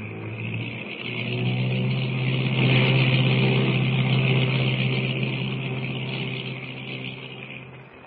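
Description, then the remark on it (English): A seaplane lands on deep water off an island and taxis up to the beach, its engine a steady low droning hum over a broad rushing hiss, swelling louder mid-way and then slowly easing off. No one speaks. “Brought that plane in perfectly”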